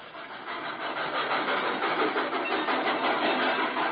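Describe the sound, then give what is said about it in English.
A Great Valley Railroad train engine idles at the Lelandsville station platform, a steady, unbroken rumble that holds at an even, moderately loud level from start to finish with no voices. “Lelandsville was a whistle stop for most Great Valley trains, but the weekend flyer stopped for us on signal.”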